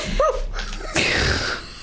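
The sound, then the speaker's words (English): A dog barks twice: first a short, high yelp, then about a second later a louder, rougher bark that trails off. Nobody speaks. “Baxter, bark twice if you're in Milwaukee.”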